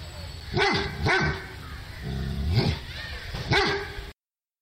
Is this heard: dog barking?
yes